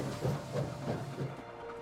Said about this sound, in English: The story train is moving very slowly past tall trees and playgrounds and ponds.